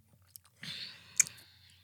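Crunchy chewing of a snack: a few faint clicks, then a sustained crackly crunch ending in one sharp bite, with no talking.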